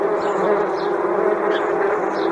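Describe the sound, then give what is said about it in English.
A dense, steady drone of many big hornets buzzing loudly in a room at an inn in Sweet Hillsburg, a continuous agitated hum with faint higher whines flitting across it, no voices. “There's bees, big old hornets in my room.”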